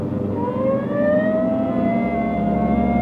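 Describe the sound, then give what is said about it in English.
A loud police car siren is switched on as the car responds to a call, its wailing pitch climbing steadily over a few seconds, with a low engine rumble underneath and no voices. “Hit the siren.”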